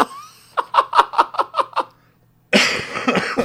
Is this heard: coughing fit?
yes